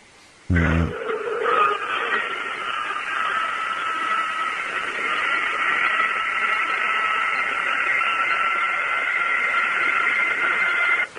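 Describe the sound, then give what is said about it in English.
An intense scream erupts suddenly and holds for about ten seconds, loud, harsh and steady, with a high, strained pitch and no voices over it. “But not at this moment, but this scream actually came from later on. But it was the same type of scream.”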